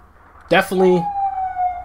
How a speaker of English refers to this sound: In the background here in Brooklyn, I think I hear gunshots, and I hear some kind of siren as well. Do you guys hear that?